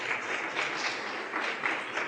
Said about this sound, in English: So, seriously, give yourselves a great round of applause for what you have done for the Lord tonight. Thank you very much.